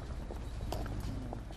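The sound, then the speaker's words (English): Footsteps walk at a steady pace across a university drill field, five or six hard-soled steps clicking over a constant low rumble of background noise, fairly quiet. “But it's always a place with lots of footsteps, making tracks, heading somewhere purposefully.”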